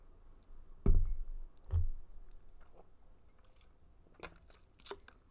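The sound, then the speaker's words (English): Someone takes a sip of a drink: two low gulping swallows in the first two seconds, then faint lip and mouth clicks near the end, with no talking. “Sorry, I had to take a sip.”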